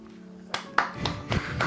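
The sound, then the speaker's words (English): A handful of scattered, uneven claps from a small audience, people listening to the show for the first time, about five soft hand claps over a low steady hum, never building into full applause. “Hey, let's have a round of applause if this is your first time listening to the show.”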